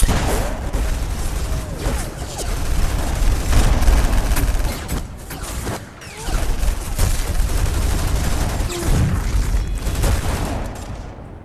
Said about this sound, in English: A lot of explosions, gunshots going off.